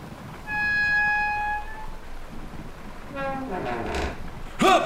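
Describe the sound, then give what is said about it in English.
The second of two doors, chosen because the first has a busted handle, creaks open with a long, steady high-pitched squeal, followed by a second wavering, groaning creak and a brief sharp knock at the end. “Handle's busted on number one, so let's see what we win behind this door.”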